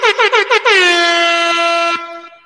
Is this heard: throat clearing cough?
no